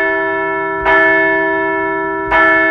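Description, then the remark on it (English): A large bell rings loud, struck twice about a second and a half apart, each strike blooming into a long, sustained metallic tone with rich overtones that carries through the whole clip. “Hey, we can't be picky these days, so let's ring the bell.”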